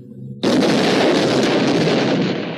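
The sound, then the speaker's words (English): A cartoon explosion of ice cream bars bursts in suddenly after a low hum, then settles into a sustained loud, crackling roar of noise that fades only slightly over a couple of seconds. “So that was exploding ice cream bars that were being handed out to unsuspecting Japanese.”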